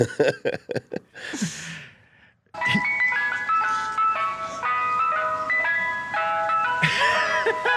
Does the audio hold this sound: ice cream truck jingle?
yes